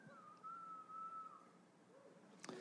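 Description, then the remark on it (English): A single long, steady human whistle from an audience member at a show, held at an even pitch for over a second, followed by quiet and a brief sharp knock near the end; no one speaks. “A whistle, a regular whistle was fine. That was like a Falconeer's call.”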